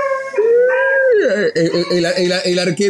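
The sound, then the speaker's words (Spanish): Dogs howl loudly: a long, rising wail that drops into wavering, pulsing whimpers and yelps over about three seconds, with no other sounds around it. “¿Cuántos perros tienes?”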